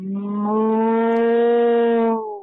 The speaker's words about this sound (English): I am sitting here next to my cow in my barn.